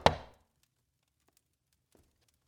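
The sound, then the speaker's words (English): A single heavy knock as Jonathan Corwin knocks on his nephew's door, ringing briefly before fading, followed by near silence and a couple of faint taps. “5 days after Mary is taken, Jonathan Corwin knocks on his nephew's door with an urgent message in hand.”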